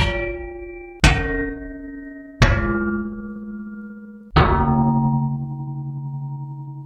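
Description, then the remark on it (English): Sir Lancelot's spear strikes a copper basin four times at uneven intervals, each loud clang ringing on with a long, humming metallic decay that overlaps the next hit. Nobody speaks. “And Lancelot's spear came down hard on the copper basin, again and again, and many great clangs rang out over the area that would one day be Castlefield.”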